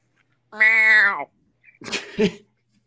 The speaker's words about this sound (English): Jesus, that cat. Kill that fucking cat. Someone kill that cat.